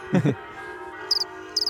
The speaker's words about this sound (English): Pay no attention to the church bell.